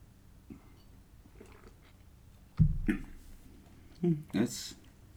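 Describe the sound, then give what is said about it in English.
Wet mouth sounds of someone sipping Nkasi Brewing Company Pacific Rain Beer, a Northwest Pale Ale: two short bursts of slurping and swallowing a second or so apart, over a quiet hush with faint murmuring. “let's give it a sip.”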